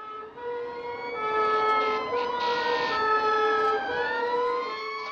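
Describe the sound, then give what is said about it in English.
A fire engine siren wails continuously, its layered tones gliding up and down in pitch over a low engine rumble, staying loud throughout with no voices. “I ran into the night, frantically dialing for the fire brigade on my mobile phone.”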